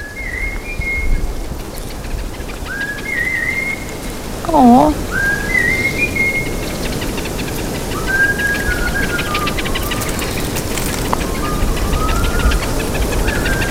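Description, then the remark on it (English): A melodic whistle call that Hadza honey hunters in Tanzania use to communicate: short, high whistled phrases rising and falling, repeated with pauses over a steady hiss of background noise, with a brief voiced exclamation midway. “they communicate using a melodic whistle, which Max is going to play for you now, the Hadza honey hunters.”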